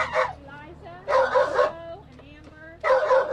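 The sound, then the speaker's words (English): Dogs bark and yip in sharp, high bursts, three loud volleys separated by quieter whining and yelping, with a slightly boxed-in sound, from inside plastic animal carriers in a graveled lot beside the Greene County Humane Society shelter, the dogs heading to foster homes. “This morning, these dogs are heading to foster homes.”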